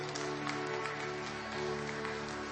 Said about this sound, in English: But what I want to do as we're doing that is, can we give Pastor some love? Can we stand up together and give him a great big round of applause and appreciation?